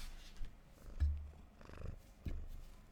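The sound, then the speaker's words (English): A cat purrs close to the microphone, a low rumbling vibration that swells in uneven pulses with a few soft bumps and rustles, no talking. “Right, I've kicked the cat out.”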